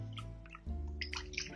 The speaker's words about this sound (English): So what I'm going to do is I'm going to just break up this starter that's floating in my water by hand.